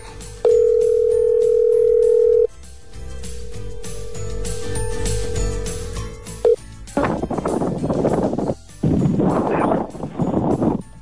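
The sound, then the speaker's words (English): A telephone ringing tone as radio station Triple M in the Goulburn Valley calls a listener: the tone sounds loud and steady for about two seconds, then hums on more quietly before giving way to harsh, crackly bursts of line noise. “All right, let's see whether he answers the phone.”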